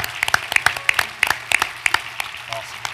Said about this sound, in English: And now would you give them a hand clap and say thank you to them?